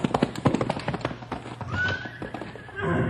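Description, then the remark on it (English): Horse hooves clip-clop in a quick, uneven patter, then a horse lets out a rising, high-pitched whinny that trails into a rough, breathy snort. “Boy, it's sure been a long time since she wore a saddle.”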